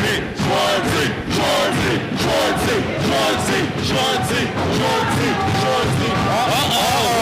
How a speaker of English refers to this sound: the crowd is chanting for Schwartzy to get back up